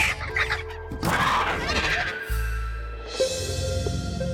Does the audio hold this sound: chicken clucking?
yes